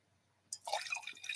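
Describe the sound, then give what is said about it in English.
Wine pours into a glass after a brief quiet moment, a steady gurgling splash lasting about a second, with no talking over it. “Any more wine?”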